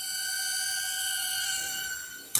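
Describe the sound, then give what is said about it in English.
A small drone in a demo buzzes with a steady, high-pitched, mosquito-like whine as it comes closer, then a sudden sharp knock as it crashes into a wall cuts in right at the end. No one speaks. “It's not doing anything just yet. Here we go. Okay. Sounds like a mosquito. Okay, it's coming closer.”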